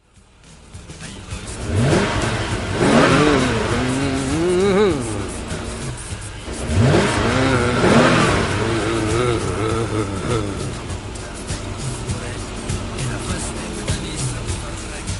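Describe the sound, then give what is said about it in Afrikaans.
A car engine being worked on revs up hard twice, pitch sweeping upward each time, then settles into a steady rumbling idle with smaller surges; the roar is loud throughout with a faint hiss underneath. “Maar solank hy aan daai kar werk, gaan die geraas nie ophou nie.”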